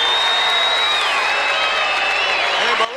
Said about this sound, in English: Diesel getting a round of applause here by the crowd for his successful Royal Rumble debut here. Bam Bam holding Mabel for Crush. Getting a little chant as well.